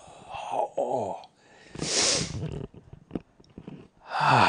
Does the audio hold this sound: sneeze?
yes